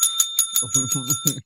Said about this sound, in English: Can I ring his bell,